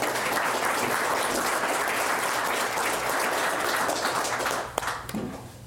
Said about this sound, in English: So I personally want to give you a round of applause for taking the time out this morning to invest in your career and your company. Thank you.